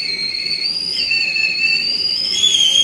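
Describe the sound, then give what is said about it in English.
A kettle whistles continuously at a steady, shrill high pitch with a few slight shifts in tone as it comes to the boil, loud, with no voices over it. “I'm just waiting for my kettle to come to the boil. A good high-pitched whistle to let me know that it's boiling well.”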